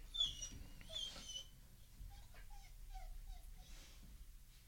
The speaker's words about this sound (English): The dog's going a little crazy. So if you hear him whining, I'm sorry. We'll just kind of push through.